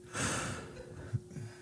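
Heavy breathing right up against a microphone: a long, airy exhale with a rough, windy rush, then softer breath noise and a small pop. No one speaks.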